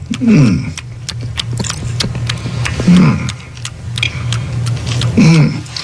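Loud, wet gum chewing by Mickey Loomis: rapid, irregular smacking and clicking throughout, broken by a few low, groaning vocal sounds over a steady background hum.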